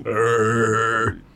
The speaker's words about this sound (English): Did you just burp in my face?